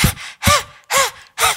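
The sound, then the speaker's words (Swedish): Four quick, forceful panting breaths with the tongue stuck out during a yoga breathing exercise, leaning forward with hands on knees, in an even rhythm, loud, each a harsh, airy huff with a slight voiced edge, separated by brief pauses. “Ja, men liksom, andningsövningarna är ju väldigt såna här, mycket flåsa och så.”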